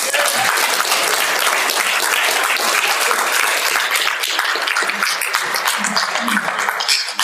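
A crowd claps steadily in a dense, sustained round of applause that stays loud for about seven seconds, with no voices standing out.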